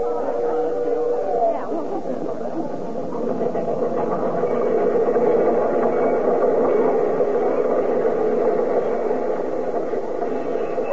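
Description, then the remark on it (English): Train number 31 pulls into a station on track 3, arriving from East St. Louis, Kankakee, Moline and Joliet, with a steady, continuous rumble and hiss, a brief tonal squeal near the start and a murmuring crowd blended underneath throughout. “I don't see anybody in uniform on that train.”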